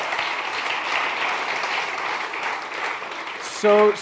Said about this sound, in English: So grateful for the many of you, and that's many of you are just clapping for yourselves because so many folks are involved in what God's doing here in this church, and it's so cool just to see that.